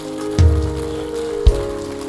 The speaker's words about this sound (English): Come on, give the Lord God a clap also.